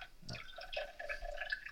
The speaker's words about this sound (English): You better not be peeing. No, I'll be pouring something into a glass.